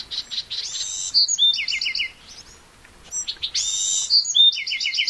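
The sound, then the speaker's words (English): A Bewick's wren, among cacti and wildflowers after rain, gives a harsh buzzy call, then bursts into a quick run of clear, trilled song phrases; the sequence repeats twice, fairly loud, with no voices. “A Buick's wren buzzes, then breaks into exuberant song.”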